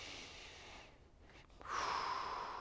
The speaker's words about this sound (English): Take in a breath.